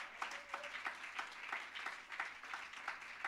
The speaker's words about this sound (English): Somebody clap your hands and give him praise.